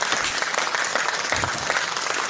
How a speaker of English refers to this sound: Got to get the applause in there every now and then, yeah? I'm just offended you didn't applaud me at the beginning when we started the show.